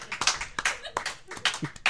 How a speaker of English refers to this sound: one of those was an angry clap.